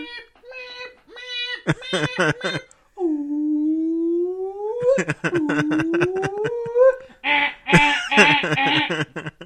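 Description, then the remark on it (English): A voice imitates a car alarm, cycling through repeated chirps, a long rising whoop, a rapid stuttering run and loud honking blasts, all sung out in one continuous, strained performance. “That's my impression of a car alarm.”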